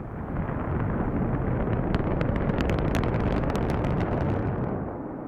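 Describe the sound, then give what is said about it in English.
A loud, rumbling roar of a SpaceX rocket's 33 engines firing, steady and crackling for about five seconds before easing off slightly at the end; no voices are heard. “Pretty quick sort of blast.”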